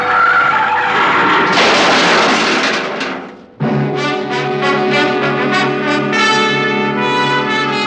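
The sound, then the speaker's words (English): A car doing about 60 brakes hard near a toll gate, with a loud screech of skidding tires, a harsh grinding squeal that breaks off briefly and resumes as a sustained, shrill tonal whine. “I took my foot off the accelerator and then jammed down on the brakes as hard as I could.”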